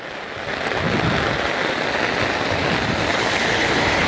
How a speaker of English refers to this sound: Shit, it's raining a lot.